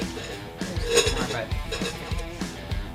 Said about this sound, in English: So help yourself to some ice. Then we're going to take this soda water and we're going to fill her up.